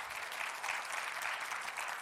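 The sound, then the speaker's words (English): An audience gives the Lord a clap offering in a morning church service, the dense applause holding at an even, moderately loud level for about two seconds with no voices heard. “Give the Lord a great clap offering this morning.”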